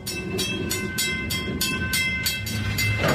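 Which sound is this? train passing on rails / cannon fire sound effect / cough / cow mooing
train passing on rails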